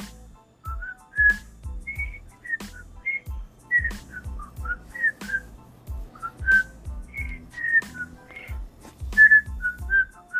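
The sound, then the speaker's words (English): A bright, melodic whistled tune carries the jaunty theme of The Andy Griffith Show over a steady, rhythmic low thump, like a simple backing beat, with no talking. “And so, there he is, you know, living in Texas, and so he starts, you know, whistling this song, you know, the Opie, you know.”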